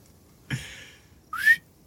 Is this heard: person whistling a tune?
yes